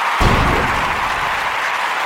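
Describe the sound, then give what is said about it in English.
A short burst of applause from a group, dense and steady, fairly loud, with no voices over it. “Big round of applause.”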